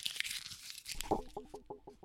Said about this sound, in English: Okay, here we go. And crumple.